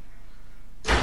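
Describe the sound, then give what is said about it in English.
A door slams shut with a single loud bang that bursts in abruptly after a moment of near silence, its heavy rumble still ringing at the end. “The door came down before I could get there.”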